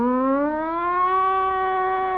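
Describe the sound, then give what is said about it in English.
A police riot squad siren wails alone, its loud, steady tone climbing slowly in pitch and then holding high, with no voices over it. “Then the riot squad comes.”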